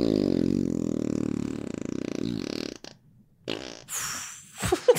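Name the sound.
fart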